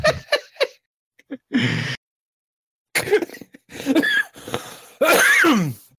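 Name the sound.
coughing fit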